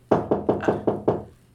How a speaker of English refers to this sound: And as he's saying that, you hear a knock at the door.